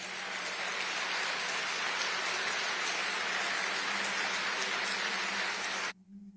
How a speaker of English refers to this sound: Unlike the DeSantis campaign, they don't have to ask for applause. It just naturally happens when he says something good.